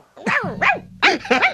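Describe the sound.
A woman yips out four quick, high-pitched barks in imitation of a small dog, loud, in two pairs with a short pause between them.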